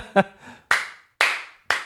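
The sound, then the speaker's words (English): Three loud, sharp hand claps land in a steady rhythm about half a second apart, each ringing out briefly, just after a short vocal sound. “What's that clap for?”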